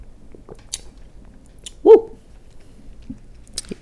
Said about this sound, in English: Now let me take a sip of this motherfucking cranberry juice.